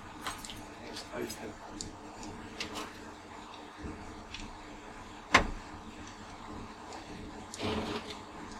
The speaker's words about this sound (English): Pause for a second. I'm just going to check the door.